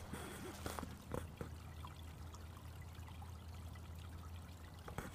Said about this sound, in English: How about this? Can I get some water on the audio here?